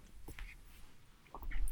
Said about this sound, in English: Another gulp of water.